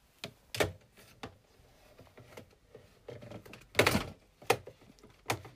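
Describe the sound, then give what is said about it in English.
A fidget spinner gets knocked off and falls, making a few sharp clattering knocks with one loud thud in the middle, with quiet pauses between the hits and no talking. “Oops, I've knocked something off.”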